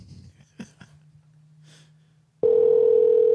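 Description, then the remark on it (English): A phone line ringing tone on an outgoing call to a person: after a few soft clicks and breaths over a low hum, a loud, steady electronic tone starts abruptly and holds to the end. “We got to see if we can catch James now. James Lee, everybody. It's ringing. It's ringing.”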